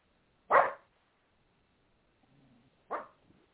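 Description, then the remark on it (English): A dog barks twice, loud, with a short whine between the sharp barks and silence around them. “the dog's yelling for Jim.”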